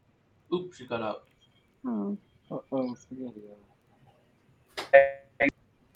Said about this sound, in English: An alarm went off.